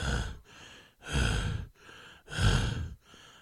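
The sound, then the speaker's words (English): A voice mimics a demon's heavy, ragged panting, with three loud breathy exhales alternating with softer inhales in a steady rhythm, no words spoken. “is there oxygen in hell? Why is it panting?”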